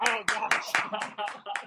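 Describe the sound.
Steady, rhythmic clapping, about seven sharp claps in under two seconds, mixed with voiced cheering or whooping that runs through the claps at a moderate level.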